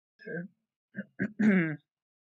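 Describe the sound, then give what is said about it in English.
A fairly loud throat clearing: a few rough, gravelly bursts, then a longer voiced rasp lasting about half a second, with nothing else going on around it. “I had to clear my throat there.”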